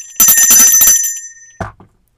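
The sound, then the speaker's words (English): A bell rings loudly in a rapid rattling trill for under a second, its bright tone lingering briefly before fading, followed by a short dull knock. “Where's my bell?”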